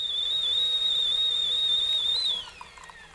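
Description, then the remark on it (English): A kettle whistles with a loud, steady, shrill tone for about two seconds, then the whistle drops off, followed by a quieter stretch that could be water being poured. “Well, I guess we'll put the kettle on, and we'll be back after this.”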